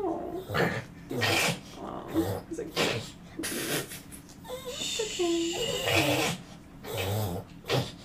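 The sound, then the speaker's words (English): A dog reverse sneezing: a run of rapid, honking snorts and gasping inhalations, repeating in rough bursts over several seconds with brief pauses between them. “Reverse sneezing.”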